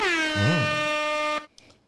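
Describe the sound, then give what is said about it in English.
A loud, blaring air horn blast, a single sustained tone rich in harmonics, holds for over a second on its own before cutting off abruptly into near silence. “Hit them with the air horns.”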